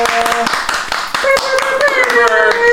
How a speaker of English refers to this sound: Let's clap it up. Somebody just had a birthday. Oh, yeah.